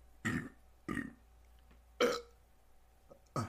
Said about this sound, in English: A little rolling burp there.